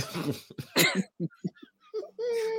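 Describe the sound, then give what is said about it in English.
A man clears his throat with a few harsh, raspy bursts, then makes short clipped grunts and ends on a drawn-out voiced hum, all fairly loud. “To clear his throat.”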